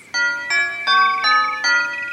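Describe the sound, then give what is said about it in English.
A melodic doorbell chime at a porch rings out five bright tones in steady succession, each note ringing on and overlapping the next, fairly loud with no voices. “Milo rang the doorbell, and a series of melodic tones echoed around the porch.”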